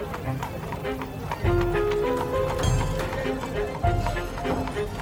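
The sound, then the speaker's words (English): Horses' hooves clip-clop steadily along a dusty street, Franklin Avenue in central St. Louis in 1885, as horses and carriages dart past, a brisk run of sharp hoofbeats over a busy backdrop of indistinct voices and bustle. “People, horses, and carriages darting past him.”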